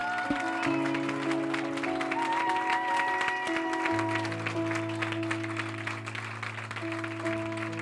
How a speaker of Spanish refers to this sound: Todos mis maestros, maestras, líderes, servidores, los que están en seguridad, con los jóvenes, todos, todos, por favor, y me los reciben con un fuerte aplauso.